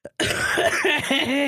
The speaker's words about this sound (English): I got sick. I'm sick. I'm gonna be sniffling. I'm gonna be coughing. Every single time I laugh, I go like...